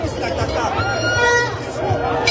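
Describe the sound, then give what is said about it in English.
Dense crowd noise of protesters filling Kwame Nkrumah Avenue in Ghana, demanding a resignation: a steady wash of overlapping voices and chatter, with occasional louder calls rising above the constant babble of many people on the road. “This is what a crowd looks like. It's a sea of people on this road, on the Kwame Nkrumah Avenue.”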